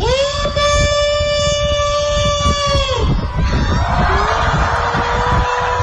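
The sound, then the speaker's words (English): A huge crowd of 2,033 people howls in unison like wolves, one long sustained wail that rises and holds for about three seconds before breaking into loud, ragged cheering and scattered calls. “All right, here's 2,033 people howling like a wolf.”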